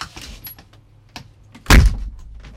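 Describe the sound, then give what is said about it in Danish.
A door slams shut with a single loud, heavy bang and a short rumbling decay, preceded by faint rattling and clicking as it swings closed. “Som døren smækker, når hun kun at se hans skygge forsvinde ud.”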